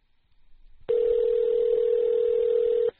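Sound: telephone dialing tones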